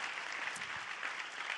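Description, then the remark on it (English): An audience applauds Jesus in a dense, steady wash of overlapping claps, sustained and even in loudness from start to finish, with no voices standing out. “Let's give Jesus a round of applause for that.”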